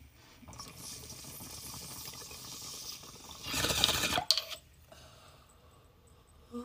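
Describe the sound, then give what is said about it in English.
Steady gurgling of water bubbling through a bong as a hit is taken, for several seconds, swelling into a louder, rougher burst before cutting off, followed by faint rattling and quiet. No one speaks. “But let's take this fucking rip.”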